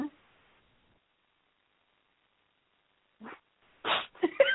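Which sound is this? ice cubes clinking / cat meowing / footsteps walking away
cat meowing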